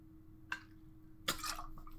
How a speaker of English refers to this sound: a little drink of water.